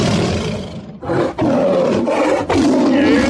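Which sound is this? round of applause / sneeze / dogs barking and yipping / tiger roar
tiger roar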